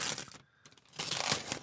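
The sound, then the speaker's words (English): A brown paper bag crinkles and rustles in two bursts, a brief pause between them, the crackling dense and bright with no voices. “They love the sound of brown paper and everything.”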